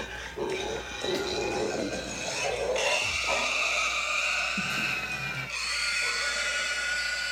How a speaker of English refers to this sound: Well, that's it. Just wanted to show you the pig thing. Just a pig screaming. That's it.